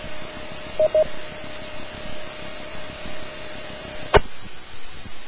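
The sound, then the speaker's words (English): Radio hiss with a steady carrier tone from the Mount Ord ham radio repeater, broken early by two quick courtesy beeps, then a sharp squelch burst as the repeater's carrier drops out, leaving only background noise. “All right, let the repeater drop, and then we'll wait for three more stations to come in.”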